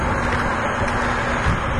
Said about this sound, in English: Okay, I'm in the back of Fresh Grocer right now, and they got this is like the semi, is that noisy? I can't tell. I feel like this is a semi-truck port.